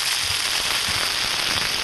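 A Tandoori Sizzler, a hot iron skillet of smoky meat served in a curry house, sizzles steadily. It makes a loud, bright hiss thick with rapid popping and crackling spatter, running unbroken for about two seconds with no voices.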